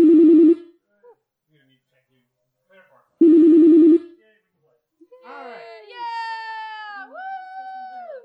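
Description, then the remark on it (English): Game show buzzers go off one after another during a buzzer check, players one, two and three buzzing in sequence: two loud, harsh, flat-pitched buzzes separated by a pause, followed by a wavering, whiny tone that rises and dips like a whimper. “So let's do this buzzer check in sequence.”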